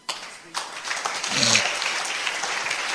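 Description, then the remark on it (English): An audience breaks into applause, many hands clapping in a dense, steady wash that swells and then holds at a fairly loud level, with a brief voice murmuring beneath it, at a church convention. “Oh, it's a good place to clap, don't you think so?”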